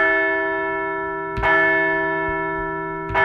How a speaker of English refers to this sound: Let's ring the bell as we enjoy the wild card and wait October baseball at Citizens Bank Park that is just a week away.